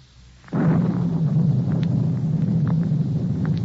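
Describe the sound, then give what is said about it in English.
A sudden crack of thunder breaks in after a brief near-silence, then rolls on as a loud, heavy, continuous rumble with faint wind. No voices. “As I came closer, collar turned up against the storm.”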